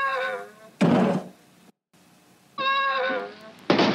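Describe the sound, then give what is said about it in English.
A Sphero R2-D2 toy robot, triggered by a button in its app, lets out a descending, warbling electronic whine as it passes out, then falls over with a loud, heavy thud. The whine-and-thud sequence repeats after a brief silence. “The next one, R2 passes out, which is it's a very different thud.”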